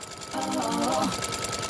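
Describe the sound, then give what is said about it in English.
A sewing machine chatters in a fast, steady mechanical rhythm, used as theme music, while a brief voiced melodic tone rises over it in the middle before fading, leaving the rattling beat running alone. “And, quick aside, she made her own theme music using the rhythm of her sewing machine.”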